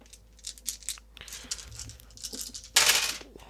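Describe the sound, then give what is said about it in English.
Five dice rattle and clatter in a series of quick clicks, ending in a louder tumbling burst as they scatter across a hard surface. No one speaks. “Okay, I've got 2 4s, a 6, and a 2 and a 1.”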